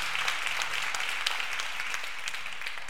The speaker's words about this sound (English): Clap your hands in this house if you're ready for the word, family.